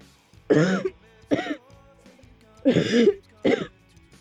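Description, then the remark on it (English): Four harsh, rasping coughs in two pairs, each a longer strained hack followed by a shorter one, loud and throaty with a rough voiced edge and brief pauses between. “Rolls over onto one side and just is quite literally trying to hack up a lung and get all of the poison out of her system.”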